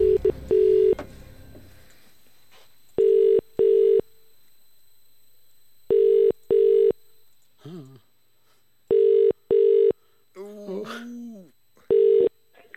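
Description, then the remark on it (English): A phone line rings out in the caller's ear as radio hosts call a listener: about four clear double-pulse ringback tones repeating at a steady pace, with brief muffled vocal noises in the gaps between rings. “But remember, you need to answer the phone within five rings and know today's featured artist.”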